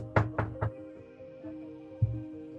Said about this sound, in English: And he's just kind of just, like, oh, okay, and then he knocks at the door.